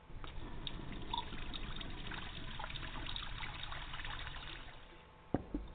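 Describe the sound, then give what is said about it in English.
A thin, steady trickle of water runs from a tap in a house with poor water pressure, soft, dribbling continuously for several seconds before a brief clunk near the end. “Flash house, but the water pressure sucks.”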